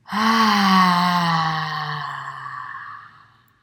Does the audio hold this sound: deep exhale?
yes